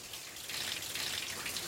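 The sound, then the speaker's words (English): Steady hiss of running water pouring down as a man showers, the shower spraying onto a surface, continuous with no voices. “First guy's in the shower.”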